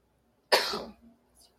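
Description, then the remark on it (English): One sharp, loud cough, trailing off into a couple of faint, smaller throat sounds, with no talking around it. “coughs repeatedly.”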